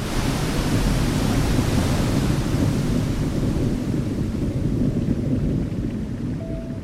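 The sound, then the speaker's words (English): A powerful, steady roar of churning river water being pushed down into a deep underwater pit, pulsing up and down like pistons, rushes continuously and loudly, a dense wall of turbulent noise with no pauses and no voices. “And all of that churning water is being pushed down into this deep underwater pit.”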